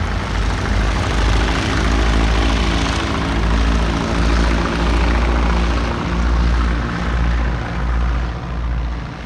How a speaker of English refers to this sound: A few minutes to exchange passenger and cargo, hurried wishes of good fortune, a short taxi for takeoff, and the grasshopper rises back up into the moonlight. Mission accomplished.